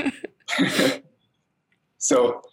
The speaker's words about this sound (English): I'm like, I'm going to need to pause here to blow my nose. Sorry.